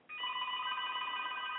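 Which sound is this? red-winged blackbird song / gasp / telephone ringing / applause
telephone ringing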